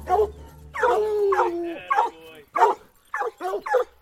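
A hound bays and howls close by, with a long drawn-out howl followed by a series of short, sharp barking bays in quick succession.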